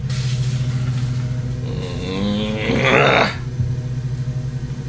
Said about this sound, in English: Wait, hold it. Hold for mower. He's still mowing. He's gone over the same spot four times.